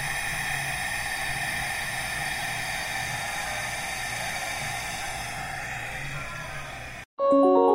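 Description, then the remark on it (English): Steady, loud roar of gas burner flames heating a brewing kettle to a boil before hops are added, a broad hissing rush that holds constant for about seven seconds, then cuts off abruptly before brief tonal sounds at the end. “You can hear it. I'm going to put the microphone down here to the flames.”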